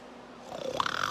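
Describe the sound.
A man imitates a panther's snorting purr-roar, a brief rough rumble that swells and rises in pitch, growing louder toward the end of a single short burst.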